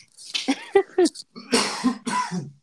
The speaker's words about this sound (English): Excuse me. Jeez. Cough up a lung, dude.